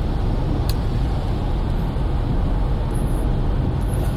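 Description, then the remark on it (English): Steady low rumble of a leased Accord car cruising along a road, heard from inside the cabin: constant, dense low-frequency drone with tire and engine noise, no talking. “This car is so much fun. I love having comfort and stability.”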